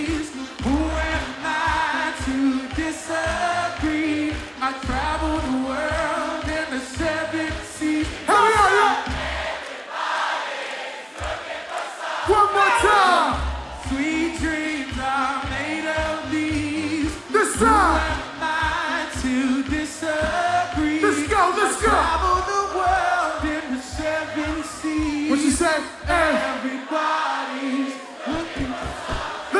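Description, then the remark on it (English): A big crowd at a live concert in Barcelona sings along loudly in unison over a thumping live band, voices and cheers filling the space continuously from start to finish. “Sing it with me now!”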